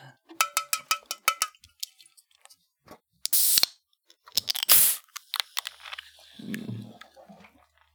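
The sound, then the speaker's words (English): Metallic clinks and ticks, then a sharp hissing pop as a can of Mountain Dew is cracked open, followed by a short splashy burst and a softer, low gurgle as the drink is poured into a cup. “I'm pouring this into my cup.”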